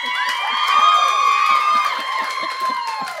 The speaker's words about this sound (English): Cheer for same-sex attraction.